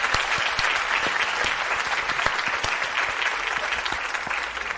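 A steady round of applause, many hands clapping in a dense, even wash of sharp claps that stays loud throughout with no voices standing out.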